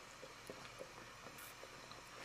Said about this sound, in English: Sorry, I needed some gulps of my coffee.